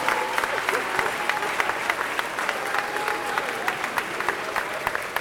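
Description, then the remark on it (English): A large crowd claps and cheers continuously, a dense wash of applause with scattered louder claps and faint whistles or shouts rising above it, steady and sustained throughout. “The crowd goes co-wild.”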